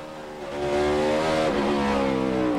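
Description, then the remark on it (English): A race car engine revs hard from inside the cockpit on a qualifying run, a loud, sustained harmonic whine that climbs and dips as the driver shifts, never going into fourth gear, with no voices over it. “All you hear is nothing but the motor?”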